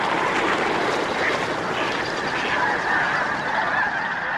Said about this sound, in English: A thousand snow geese take off all at once, the black flag flight feathers of the tips of their wings sure like the blades of powerful engines.